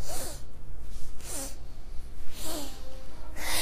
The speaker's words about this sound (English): All right, so let's do another one together. Ready? So when we're together, we're going sniff, sniff, sniff, whoosh. And again.